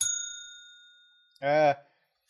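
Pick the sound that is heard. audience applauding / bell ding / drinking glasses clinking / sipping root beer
bell ding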